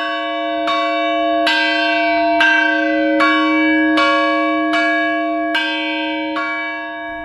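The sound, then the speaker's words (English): A church bell that is being retuned rings out in a steady series of about nine strikes, each clang overlapping the long, resonant hum of the last. It sounds loud, with no voices. “And they were actually retuning a church bell at the time.”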